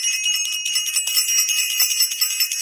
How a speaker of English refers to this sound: We want to ring the bell for self-invested.